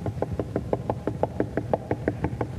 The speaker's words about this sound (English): If you're on the outside of the church, you don't have the Holy Ghost, you don't know Jesus Christ, then the process for you to get the door open is to walk up to the door and knock.